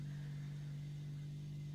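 A car engine idles steadily in a parking lot with a constant low hum and a faint rumbling texture, unchanging throughout, with no voices.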